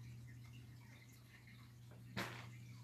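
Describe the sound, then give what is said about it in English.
Faint, steady running water trickles from an unseen source right beside the listener, under a low electrical hum, with one brief sharp splash or knock near the end; no one speaks. “I'm going to follow the noise of where this water is coming from.”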